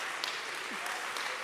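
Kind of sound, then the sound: crowd, audience clapping hands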